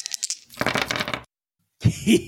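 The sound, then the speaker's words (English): Two dice clatter and tumble across a hard tabletop in a quick burst of rattling clicks, fairly loud, then settle into silence before a voice is heard briefly. “Okay, that's two dice.”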